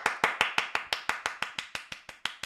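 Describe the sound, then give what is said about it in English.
A single pair of hands claps steadily and quickly, about five or six sharp, evenly spaced claps per second, fairly loud, with no voices. “This is just the round of applause I get.”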